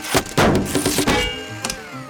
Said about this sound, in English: I like the way a baseball in a blender sounds. Can I do it again?